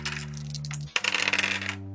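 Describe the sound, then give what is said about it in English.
Dice rolled for a knowledge roll in a game clatter across a hard surface in a quick burst of sharp clicks and rattles that settles after about half a second, over a steady low hum. “Go ahead and make a knowledge roll.”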